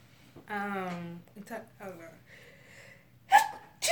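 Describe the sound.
A sneeze bursts out sharply and loudly near the end, following a drawn-out voiced sound and some quieter vocal noises.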